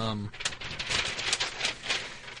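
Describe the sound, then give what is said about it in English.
Paper flapping and rustling in quick, irregular crinkly bursts for about two seconds, moderately loud, just after a brief voiced sound at the start. “Just the flapping paper?”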